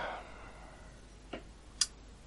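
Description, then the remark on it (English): Ping pong balls bounce and rattle away into the distance: two light, hard ticks about half a second apart, the second sharper and brighter, over a quiet, steady background hiss with no talking. “Tink, tink, tink of ping pong balls rattling away into the distance.”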